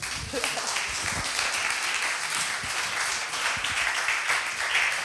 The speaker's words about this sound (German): Und wir wollen nochmal Danke sagen, also klatsch!